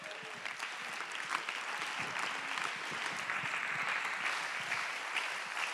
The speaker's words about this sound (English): Go ahead and clap your hands and give God the praise.